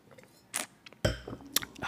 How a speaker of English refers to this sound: So, yeah. Let's get another sip on this beautiful wine.